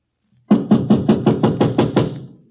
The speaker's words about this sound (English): Shall we knock or force our way in? I will knock.